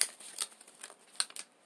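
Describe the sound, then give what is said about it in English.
Dice are rolled, a handful of light, sharp clicks and clatters scattered irregularly over under two seconds, quiet, with no voices. “Take the dice and roll them.”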